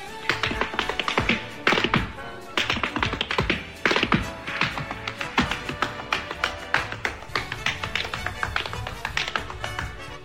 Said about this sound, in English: Someone's at the door